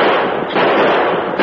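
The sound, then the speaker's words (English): A loud, rapid volley of pistol shots fired in quick succession by a fleeing bandit leader on a galloping horse at his pursuers, the cracks blurring into one another with a sharp fresh burst near the end; no voices are heard. “He emptied his gun in their direction.”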